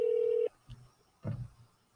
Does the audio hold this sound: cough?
no